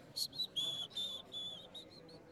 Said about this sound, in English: Then he put his hands in his pockets and sauntered, whistling, out the dining room door.